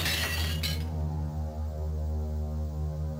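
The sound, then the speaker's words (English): A fist punches through glass: a sharp, bright burst of shattering glass fills the first moment, then cuts off, leaving a steady low electrical hum droning on alone. “He punching glass.”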